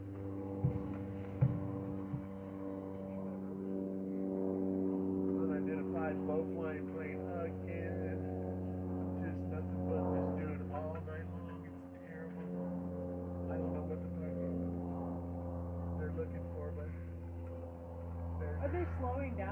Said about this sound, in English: I'm gonna finish it and then report it to the FAA as a non-identified. It's an unidentified low-flying plane.